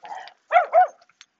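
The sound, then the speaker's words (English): A big dog lets out a low rumble, then two loud, deep barks in quick succession, with no one talking. “So, another big dog.”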